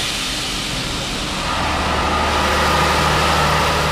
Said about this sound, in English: It's called cooled exhaust gas recirculation, or cooled EGR, and it's been designed and honed here in Cummins Technical Center, where engines in test cells run around the clock. Here we go.